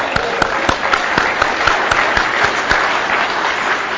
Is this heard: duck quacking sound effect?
no